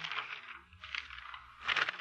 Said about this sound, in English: The telephone book. Listen, Mr. Avery. The sound of the flipping pages. Your daughter's phone number.